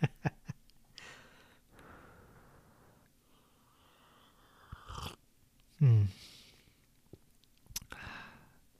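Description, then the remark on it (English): Quiet sipping of hot ginger tea: soft slurps, swallows and breaths, with a brief louder knock partway through, like a mug touching down, and no talking. “Let me take a sip of my tea here.”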